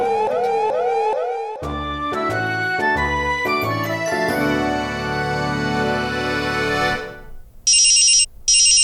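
telephone ringing

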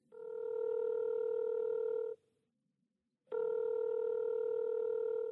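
telephone keypad dialing tones

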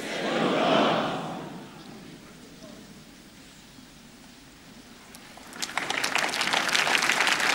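audience clapping and cheering

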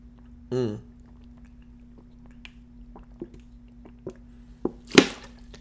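drinking sips of water

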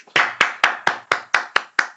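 hand clapping

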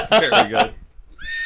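horse neighing sound effect

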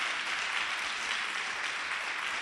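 audience clapping hands

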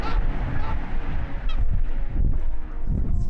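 geese honking

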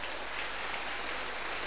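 audience applauding

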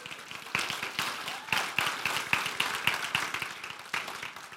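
audience round of applause

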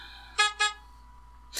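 car horn beep

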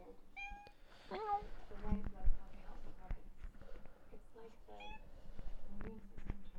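cat meowing

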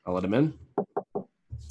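knocking on a door

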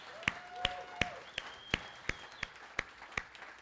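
audience clapping hands

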